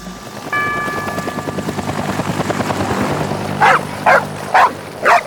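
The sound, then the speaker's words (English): Dogs bark four times in a quick, evenly spaced series near the end, loud, over a steady low mechanical drone resembling a helicopter that runs throughout. “You know I don't give the dogs people food.”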